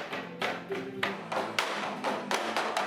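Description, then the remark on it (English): Bamboo poles clap and knock together for the Tinikling, a Filipino cultural dance in which dancers jump through the clapping poles: a brisk, repeating rhythm of sharp wooden clacks with duller thuds between, fairly loud, with no voices over them. “It's a Filipino cultural dance where the dancers need to coordinate their moves and jump through that clapping bamboo.”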